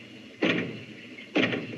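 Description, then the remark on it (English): Two dull knocks on a door, about a second apart, each with a short booming resonance that lingers before fading. Nobody speaks, and the background stays quiet. “Knock twice if I'm not the first.”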